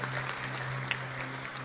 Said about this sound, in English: Let's clap for that, boys and girls. Amen to that. That is beautiful.